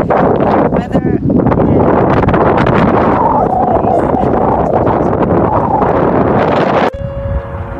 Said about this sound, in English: It's kind of windy out here this morning, so I'm going to try to stay grounded here.